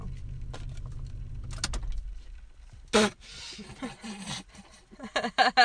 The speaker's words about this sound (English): I just shut my car off and the lights went off.